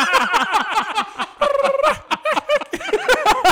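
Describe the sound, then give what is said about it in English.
A person's voice imitates a T-Rex mating call: loud, rapid gobbling calls warble in quick repeated bursts for several seconds, continuous, like a group of turkeys sounding off together, with no talking. “That's a T-Rex mating call.”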